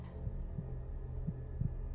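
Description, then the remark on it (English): A muffled, low heartbeat thumps in soft doubled pulses, about two beats in two seconds, over a steady background hum with a faint high whine. No one speaks. “I can hear your heart beating.”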